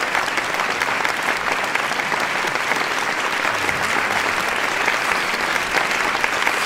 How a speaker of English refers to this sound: I don't know if they could hear it, but it was, I played clapping.